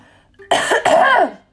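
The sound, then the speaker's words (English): A single loud cough with a rough, harsh burst that breaks briefly and then trails off into a throaty, voiced rasp, with no talking around it. “Sorry, I need to cough.”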